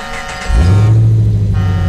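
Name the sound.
truck driving past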